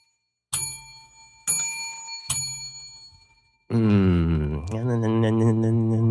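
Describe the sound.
A bell rings three times, each bright metallic strike ringing out and fading before the next, then a voice starts up loudly right after.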